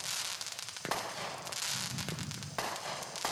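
Sharp firework bursts from Blood Money, a 49-shot firework cake, go off, two sudden loud thumps standing out, over a continuous dense hiss of crackling sparkle that fills the whole stretch.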